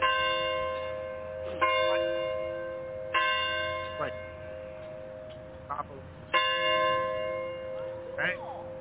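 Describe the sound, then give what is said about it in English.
Wedding church bells ring out in a steady peal, each new strike landing every second or two over a long, humming resonance that lingers between hits, clear. “He had me listen to the bell for 2 days. All I hear was wedding bells.”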